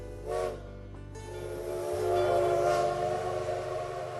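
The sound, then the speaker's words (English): A train rumbles past with a low, steady roar while a long horn blast sounds, its tone holding and swelling in the middle before easing off, with no talking. “It also became a major stop for the new Winona and St. Peter Railroad years later.”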